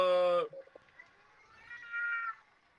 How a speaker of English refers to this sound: Is someone just playing a sound effect of cat music? Yeah, guess who that? Guess who that is? Is somebody just messing with us and playing cat sounds?